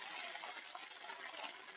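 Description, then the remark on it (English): Water drains away in a steady, rushing gurgle, a continuous hissy wash with small bubbling flickers, fairly soft and without any voices over it. “If you let all the water drain out, we've all gone down the stairs.”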